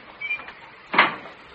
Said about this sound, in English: Hey, what's going on? She closed the basement door. She locked me in.